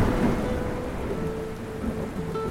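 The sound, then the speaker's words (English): Steady rain pours down under a low, continuous rumble of thunder, a dense stormy wash that stays fairly even in loudness throughout, with no voices. “For our grand finale, we have a ghost story set amongst crumbling Greek ruins on a dark and stormy night.”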